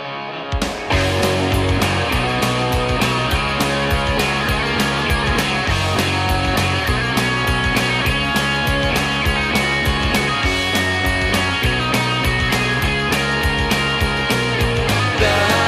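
A punk rock song plays loud at the start of a show, with distorted guitars and a driving, steady drumbeat filling the whole clip and no one talking over it.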